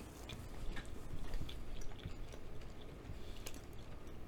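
Crunchy chewing of an old fashioned donut flavored cookie with brown sugar on the edges, a steady stream of crisp crackles and small snaps repeating over several seconds, loud, with no talking.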